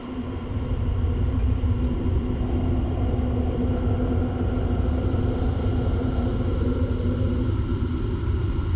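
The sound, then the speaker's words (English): Synthesized wind, made by dialing a 1,000 frequency dial back and forth: a steady, dense low roar with a faint hum running through it, joined about halfway by a bright, airy hiss that stays to the end. No voices. “Let me pull the construction down to just show you how you can do this with wind by itself.”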